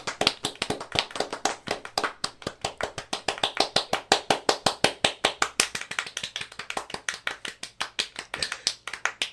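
Rapid one-handed clapping goes on steadily for several seconds, sharp hollow claps in a quick even rhythm, fairly loud, with no talking over it.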